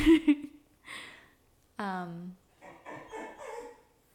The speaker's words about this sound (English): We got to go take out our dog. All right. Well, guys, he's been like whining.